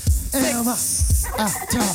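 Turkeys gobble loudly, several rapid warbling calls overlapping in quick succession, with low thumping beats underneath.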